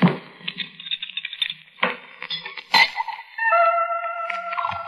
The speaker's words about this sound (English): I poured out the drink.